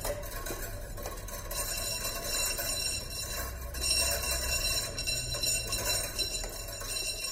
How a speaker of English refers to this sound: That's onto the main drive wheel, and basically when the wind blows, that drives the main wheel around. And that in turn drives the pen mechanism, which is over here. So when it's really windy, it sort of makes this sort of sound.